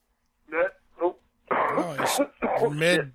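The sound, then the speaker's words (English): Two short, throaty bursts followed by a longer, raspy fit of harsh coughing with strained vocal sounds, fairly loud, all within about three seconds. “Mid cough, yeah.”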